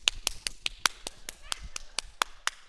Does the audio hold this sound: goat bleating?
no